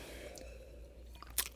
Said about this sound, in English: We took a sip at the same time. Sometimes that happens, people.